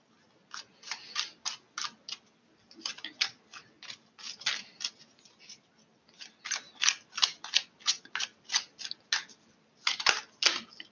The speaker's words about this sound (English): Let me shuffle a few more cards.